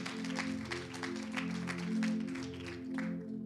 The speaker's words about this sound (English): If you're going to give him a clap, give him a clap. Amen.